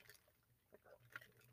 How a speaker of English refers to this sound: Hold on one second. Let me get a little water here.